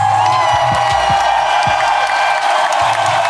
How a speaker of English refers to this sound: Applause, my bad.